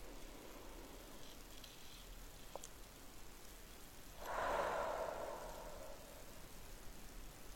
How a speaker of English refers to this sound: All right, and we're just going to start with a couple of deep belly breaths. So deep breath into your belly and just feel how it rises, and just exhale as if you are breathing out through a straw. And let's do that or another 2 or 3 times.